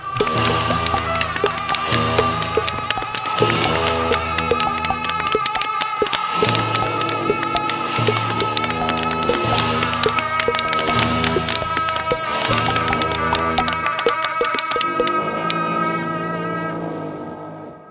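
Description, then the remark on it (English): A body percussion performance by a band, begun after a count of four: loud, steady, rhythmic claps and slaps layered over sustained pitched tones, continuing without talk for the full stretch before tapering off at the very end. “Let's give another round of applause for the ….”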